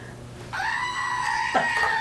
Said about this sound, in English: We didn't do the screaming goat the whole show.